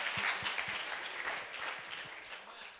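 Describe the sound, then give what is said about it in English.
A church audience claps their hands in praise of God, a dense, steady wash of many overlapping claps that stays loud throughout before easing off slightly toward the end. “Let's praise him now with clapping.”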